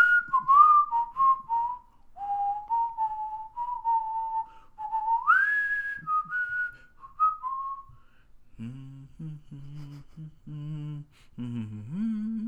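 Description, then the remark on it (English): Someone whistles a tune, the pure tone gliding through a wavering melody for several seconds before giving way to low hummed or voiced notes at the end. “I probably don't whistle that one very good either.”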